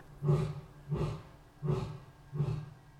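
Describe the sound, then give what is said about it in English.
A male Asian lion gives four deep, rhythmic roaring grunts in the evening in Dublin, marking his territory. The grunts are evenly spaced about every 0.7 seconds, each a low resonant pulse with breathy texture, heard clearly with no talking. “And it's the Asian lion, and it's usually the male lion. He sits there in the evening time and he likes to mark his territory.”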